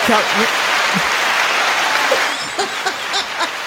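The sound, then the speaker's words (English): A crowd gives a round of applause with dense, continuous clapping, a few sharper extra hand claps standing out near the end, with brief voices mixed in. “Come on, give me a round of applause.”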